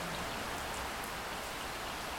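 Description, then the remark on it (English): Steady rain falls continuously, a dense even hiss of drops with no pauses, moderately loud, with no voices or other sounds. “Exhilarating Rain Meditation - Power Yourself Up with Rolling Thunder”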